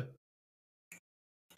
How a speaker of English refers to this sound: That was me just sort of half laugh. Coughing, half laughing.